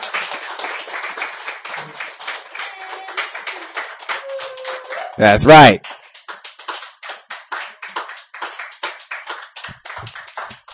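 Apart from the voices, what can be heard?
audience clapping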